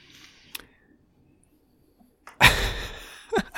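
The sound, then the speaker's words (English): After a near-silent stretch with a faint tap, two kittens knock over an old, unused iMac computer, which topples with a sudden loud crashing thud that rattles and fades over half a second, followed by a shorter knock. “So, yeah, they just knocked over an old iMac computer that we don't use anymore.”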